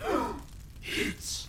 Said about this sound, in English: As the figure stepped forward to receive the bow, there came a small gasp from the fallen mage.